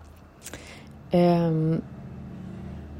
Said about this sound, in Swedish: Nu kör de massa motorcyklar igen. Jag vet inte om ni hörde det.